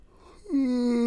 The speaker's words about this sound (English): Have grubbed mushrooms. And starting to kick in a bit. And I always find the initial bit, again, all allegedly, gives me the yawns. And, yeah. So, that is why I keep yawning.